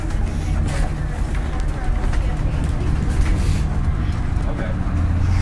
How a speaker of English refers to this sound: the stream of vehicles back there goes on forever. We can't even see the end of it.